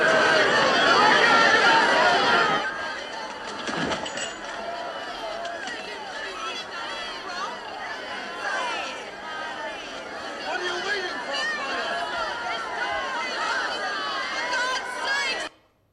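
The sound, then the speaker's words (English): A large crowd shouts and clamors for Barabbas to be released and for a man to be crucified, loudest in the first couple of seconds, then settles into a steady, agitated roar of many overlapping voices that continues until it cuts off abruptly. “In just 5 days, it went from the crowd acclaiming him to them shouting for him to be crucified.”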